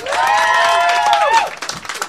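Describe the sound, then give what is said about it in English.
An audience claps steadily for about two seconds as an applause vote for contestants, while a loud, sustained cheer or whoop rises over the applause and then slides downward before fading into the remaining clapping. “So I we're going to clap again.”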